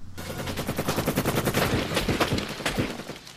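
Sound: gunfire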